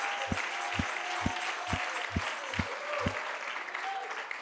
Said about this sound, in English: Everybody clap your hands to the Lord.